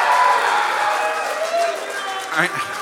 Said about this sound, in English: I know that's a cheap attempt to get applause from this crowd.